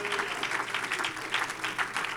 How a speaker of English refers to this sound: In the mighty and powerful name of Jesus, we ask, can you clap your hands and let the Lord know how much you love him tonight?